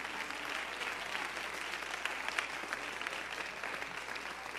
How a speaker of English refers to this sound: Would you just give the Lord a hand clap of praise for his word?